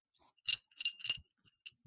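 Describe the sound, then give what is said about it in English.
The small collar bell of a cat named Barry jingles in several quick, bright, tinkling bursts, irregularly spaced and fairly soft, with brief pauses between shakes and no voices. “I can hear his bell.”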